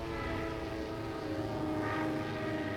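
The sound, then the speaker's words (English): A steady, droning biplane propeller engine hums loudly and continuously, its pitch and intensity swelling slightly midway as the aircraft passes overhead, with no voices present. “She's pulling above the German biplane!”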